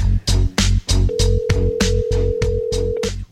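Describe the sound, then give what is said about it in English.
A phone rings in quick, steady pulses during an outgoing call, loud, with a sustained electronic tone holding underneath through most of the ringing. No voices. “What kind of phone do you think he has?”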